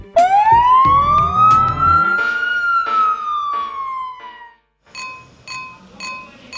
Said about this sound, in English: they use their sirens to alert people that they're on their way